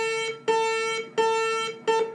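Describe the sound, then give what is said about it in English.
A school bell rings as a loud, buzzy electronic tone, steady in pitch, pulsing in about four long bursts separated by brief gaps, with no voices. “That's the bell.”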